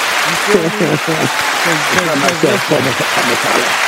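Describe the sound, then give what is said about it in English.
Steady applause from a group, dense overlapping hand claps that stay loud throughout, with voices calling out and cheering over the clapping. “So, listen, we just want to give you a flower, give you a hand clap.”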